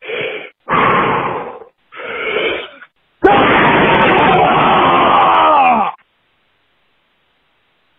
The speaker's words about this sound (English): You know, if any of you out there have a, you know, your life isn't going exactly the way you want it, like mine isn't, and, you know, you're just kind of feeling like shit, if you can, go ahead and scream with me.